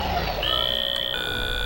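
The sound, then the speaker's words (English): An apartment door buzzer rings with a steady, high electronic tone that holds for over a second, its pitch shifting slightly midway, over a low rumbling background. “Someone get the damn door! There's 33 people in the apartment. You'd think someone could get it on a first ring.”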